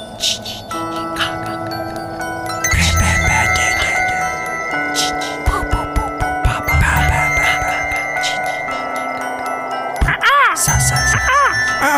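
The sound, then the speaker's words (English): A rooster crows loudly nearby, its call rising and falling over a busy background of clucking fowl, a faint jingling bell, and people talking. “Get out of here, bird.”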